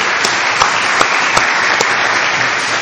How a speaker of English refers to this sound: can we all welcome him with some applause?